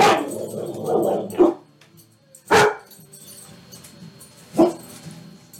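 A solid black dog with very large white teeth barks in sharp, loud bursts: a rough, growly stretch at the start, then three single barks spaced about a second or two apart, with quiet low rumbling in between.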